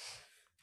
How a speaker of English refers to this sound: That was a sneeze.